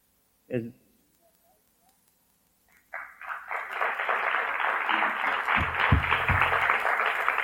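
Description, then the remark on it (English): A short thump, then after a few quiet seconds an audience at a Toastmasters meeting bursts into steady clapping for the topics master, building and holding as a dense, even patter of many hands through to the end. “Hard to clap with a microphone in your hand.”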